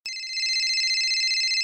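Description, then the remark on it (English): A telephone ring effect: one steady, high electronic trill with a fast warble, sustained for about a second and a half, loud, with no voices. “You guys, it's time to phone a friend.”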